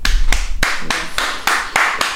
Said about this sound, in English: Round of applause.